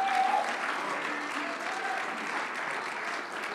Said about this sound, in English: Oh, I wish you'd clap your hands unto the Lord, somebody.